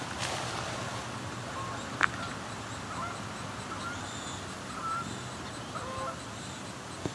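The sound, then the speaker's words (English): Canada geese honk in scattered calls as they come over a river and land in it, over a steady outdoor background hiss, with a couple of sharp brief clicks mixed in. “Comes some Canada goose.”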